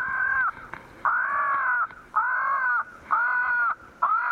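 Harsh, drawn-out crow distress calls from a tape recording repeat about five times in a steady rhythm, loud, played over a speaker in a neighborhood of tall pines and oaks near a ball field around 6 o'clock to keep crows from roosting there for the night, with faint background noise between caws.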